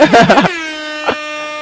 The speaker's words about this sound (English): Aw, so she didn't hear the air horns? Alright, we'll give her more air horns.